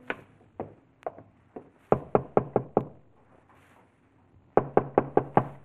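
A traveller knocks loudly on the wooden door of a lonely farmhouse, standing on the porch: a few scattered knocks, then two quick bursts of about five firm raps each, separated by a short pause, with no voices.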